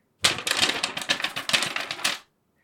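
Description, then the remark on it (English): Paper rustles and crinkles for about two seconds in a steady run of crisp, crackling bursts, with no voices. “I have this paper from the Omerlin. Listen, I'm going to do like Matt.”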